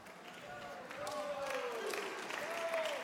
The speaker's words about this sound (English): Okay, half the room clapped.